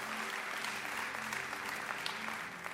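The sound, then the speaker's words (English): A young woman's continuous hand clapping fills the whole stretch, a dense, steady patter of claps at fairly even loudness, with a faint low hum underneath and no talking. “Yeah, this one young lady here, she's clapping.”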